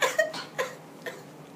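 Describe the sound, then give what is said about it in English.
A few short, breathy bursts of coughing mixed with laughter, four quick uneven hits that fade in strength, fairly quiet with no speech. “I'm laughing while I'm coughing.”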